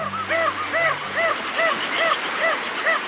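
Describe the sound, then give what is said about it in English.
Crested auklet calls, a small seabird: a steady series of about seven short, nasal, yelping hoots in quick rhythm, clear over a faint low background hum, with no talking. “Crested auklets are small seabirds that nest on remote cliffs in the northern Pacific and the Bering Sea.”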